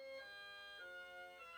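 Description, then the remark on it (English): A clock chimes with a bright, trilling run of sustained metallic tones that step between a few pitches, fairly faint and heard alone without any voices. “It's the clock. It's Jules's weird clock. It kind of trills, though.”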